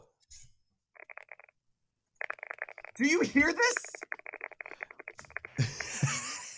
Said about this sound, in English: Yes. It does sound very smooth. It sounds very buttery. I can't hear you because we can only hear the mechanical keyboard.